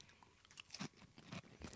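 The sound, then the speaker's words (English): Crunching of ridged Ruffles potato chips, several sharp, crackly bites in quick irregular succession with chewing in between, fairly quiet and with no talking. “Now they went Ruffle instead of the regular classic Hers chip, so it gives it a little more crunch.”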